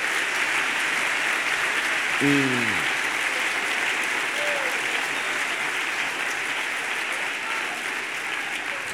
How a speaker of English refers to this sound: Somebody clap your hands here a second.